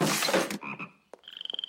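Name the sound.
toads croaking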